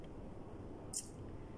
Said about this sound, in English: I'm gonna sip some coffee out my mug.